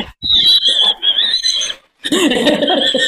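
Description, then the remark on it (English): A dog barks and snarls ferociously in two loud, rough bursts, the second harsher and more growling than the first, with no one talking. “She's got a beautiful dog. Oh, it sounded like Cujo.”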